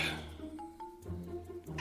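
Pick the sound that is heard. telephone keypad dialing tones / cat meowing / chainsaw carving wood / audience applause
cat meowing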